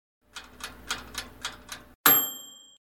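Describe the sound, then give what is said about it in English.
A wind-up timer ticks in a steady, even rhythm about six times, then a bright, high bell rings out sharply and slowly fades. No one speaks. “Can you set the timer?”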